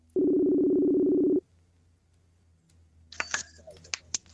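A single loud, steady electronic ringing tone of an outgoing phone call to the manager of a brand new Academy Sports store in West Virginia sounds for just over a second and stops, followed by quiet and then a few sharp clicks and handling noises.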